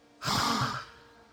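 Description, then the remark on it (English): A single voiced gasp from a woman, sharp at onset and trailing into a breathy exhale, fairly loud, performed by a person with no other speech around it. “And with that, she gasps again.”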